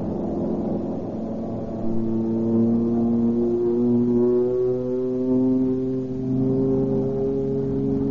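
A loud airplane engine roars steadily throughout as a plane over the country north of Tucson climbs for altitude, its droning pitch rising, dipping briefly near the end, then swelling again. No one speaks.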